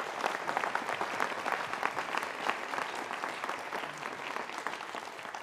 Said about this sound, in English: And I think we should give them a round of applause for the work they did.